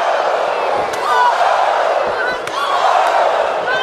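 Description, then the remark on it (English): Three sharp, slapping wrestling chops, Charlotte Flair's signature chops on Becky Lynch, crack out at uneven intervals over a loud, constant roar of crowd noise at a wrestling match, with the crowd swelling in reaction between the hits. “These signature Flair chops.”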